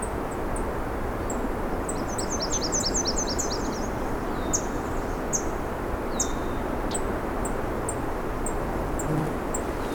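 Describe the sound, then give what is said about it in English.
Scattered, sharp high-pitched tink calls of a swamp sparrow ring out repeatedly in a wetland, with a brief rapid trill early on, all over a steady, loud background hiss. “These tink sounds, that is swamp sparrow.”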